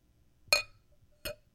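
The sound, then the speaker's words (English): Two bright clinks of glasses banged together, the first at about half a second and a second, slightly softer one around 1.3 seconds, each ringing briefly with high metallic overtones over near silence. “If you just keep banging glass together, it'll make noise.”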